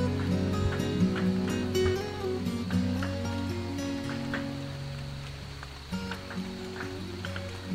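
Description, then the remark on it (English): Gentle summer rain falls steadily, with scattered droplet taps and a soft hiss, over a low, sustained humming drone. No one speaks. “You just can't keep the rain out of your head, even if you wear a hat or you stay indoors.”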